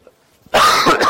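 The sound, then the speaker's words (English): A preacher gives a single loud cough during a sermon, bursting out after a brief quiet moment, harsh and breathy with a raspy throat-clearing quality. “Excuse my cough.”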